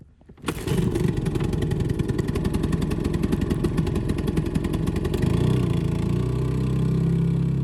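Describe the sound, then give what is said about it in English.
A small outboard motor on a dinghy heading back to a yacht starts up and runs loud with a rapid, steady putter, then settles into a deeper, smoother drone near the end. No one speaks. “I'm on a dinghy heading back to the yacht to install the new motor.”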